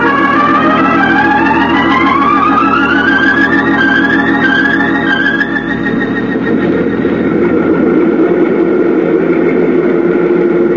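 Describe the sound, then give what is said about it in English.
The Singapore Clipper airplane taxiing up to the gate in Hawaii: a loud, steady engine drone with whining tones that climb in pitch over the first several seconds, then settle into a rough, even rumble. No one speaks. “There's the Singapore Clipper now, taxiing up to the gate.”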